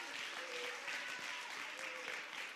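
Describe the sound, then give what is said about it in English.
A church audience claps their hands in praise to the Lord, sustained dense applause, a steady wash of many overlapping claps at an even level with a faint murmur of voices mixed in. “Oh, somebody give the Lord a mighty hand clap of praise if you believe a revival is coming.”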